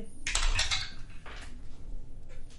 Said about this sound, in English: you have 3, you have 2, we'll chuck them all down the dice tower.